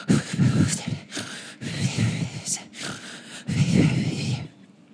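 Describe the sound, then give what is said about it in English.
A voice imitating the fitful snoring of a sleeping gnome: four or five rough, breathy snorts and groaning inhales with an uneven rhythm, broken by short pauses, fairly loud and without any words. “Still snoring, but it's quite fitful. It's like a snoring that doesn't continue on its pace.”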